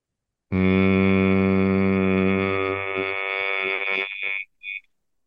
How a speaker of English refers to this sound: I'd prefer 5 minutes, and just do deep diaphragmatic breathing. And with every exhale, so you're going to take a deep breath in. And on the exhale, you're going to hum.